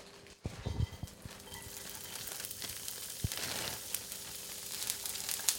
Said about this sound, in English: The last part is shredded carrots, which he also fries. It brings out the sweetness.